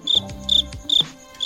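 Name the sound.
crickets chirping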